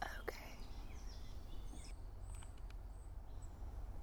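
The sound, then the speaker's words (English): Faint calls of a black phoebe and chestnut-backed chickadees chatting to one another: a few brief, high chirps scattered over a steady low outdoor rumble, with no talking. “And right now, in the background, we're hearing quite a few different species. If we just sit here for a second and take it in, there's that black phoebe calling.”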